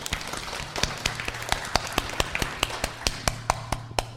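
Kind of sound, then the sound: crowd, audience clapping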